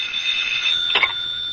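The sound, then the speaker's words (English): A telephone rings with a steady, shrill electronic trill that holds for over a second, broken briefly by a short rustling click partway through. “And then suddenly the phone was ringing.”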